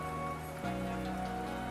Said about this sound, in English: Oh, can you hear that? Just started raining outside.